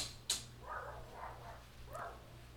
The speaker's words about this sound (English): Is the cat out? Cat must be out because they're barking in that corner.